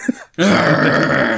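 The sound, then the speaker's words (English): A voice imitates a gruff growl, mimicking Hugh Jackman playing Mad Max as if he were Wolverine: a short breathy onset, a brief pause, then a sustained, loud, rough low growl lasting about a second. “Why is he growling?”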